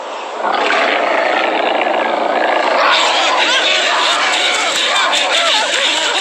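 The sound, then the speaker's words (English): A mountain lion lets out a loud, sustained roar that starts abruptly and rumbles on continuously for several seconds, harsh, with no talking over it. “Giant mountain lion found them. It chased them all the way back to the cave.”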